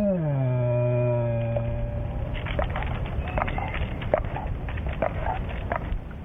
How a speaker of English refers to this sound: Some people have described it as a growl. Because if a person is afraid of an animal, any sound they make will be interpreted as a growl. But it's just their moan of fear. The bear is sitting up in a tree in abject terror.